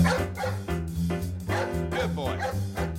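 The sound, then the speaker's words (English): A dog barks in a series of short, loud yaps over upbeat band music, the barks recurring every second or so and sitting up front in the mix. “Cue the dog.”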